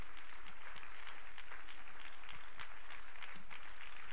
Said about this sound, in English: Would you once again clap your hands to the Lord? Let's give him praise.